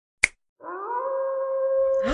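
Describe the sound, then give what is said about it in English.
A sharp snap rings out, then after a short pause a wolf's long, steady howl rises slightly and holds for over a second before fading into a low rumble. “That wolf howled twice exactly the same.”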